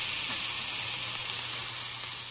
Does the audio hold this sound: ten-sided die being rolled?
no